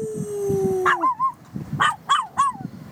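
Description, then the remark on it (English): A dog howls in several short, wavering yowls that rise and fall in pitch, fairly loud, with a steady low tone fading out just before the first cry. “Can you howl?”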